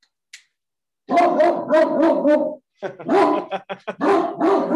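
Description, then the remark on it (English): A Great Dane barks loudly, a run of deep, rapid barks, then a brief pause and another burst of heavy barking. “we have a great Dane.”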